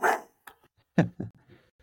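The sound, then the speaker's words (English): A dog barks a few times, one sharp bark up front followed by a couple of shorter, softer yips and woofs in an uneven rhythm, with no talking. “My dog was chiming in saying he kind of likes the balanced schedule too.”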